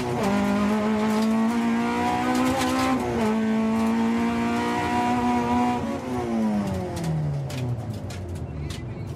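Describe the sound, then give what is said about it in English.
A loud car engine drones and shifts pitch through the gears while gravel rattles and clatters constantly against the underside of the bare metal body, heard from inside a family car used for rallying, its seats and soundproofing ripped out to save weight. “This is what your average family car sounds like, just as a metal box. You can hear every bit of gravel hitting the underside of the car.”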